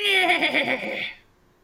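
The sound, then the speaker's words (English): A horse whinnies angrily and rears up after its skeletal rider is knocked off: one loud, shrill neigh with a quavering, shaking pitch that lasts about a second before breaking off into silence. “You knock the skeleton clean off the horse and its bones go clattering across the ground behind the horse as the horse whinnies in rage at your action taken against its rider.”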